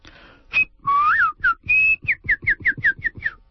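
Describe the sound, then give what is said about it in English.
A person whistles a birdlike tune while walking, starting with a few sliding and sustained notes, then a quick run of short, evenly spaced chirping whistles, imitating birdsong. “While I walk, I whistle and imitate the songs of birds, just as my grandmother taught me.”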